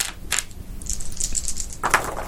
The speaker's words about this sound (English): And that's three sixes, so roll three more dice.